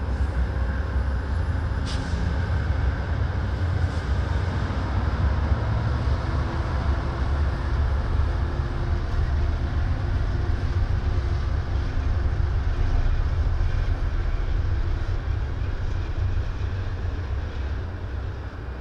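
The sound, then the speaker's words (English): A steady, loud low rumble of a train rolling along the tracks, with constant mechanical roar and faint rattling throughout, with no talking. “I don't really want to get off the train.”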